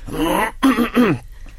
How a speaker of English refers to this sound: You're going to clear your throat. Hold on.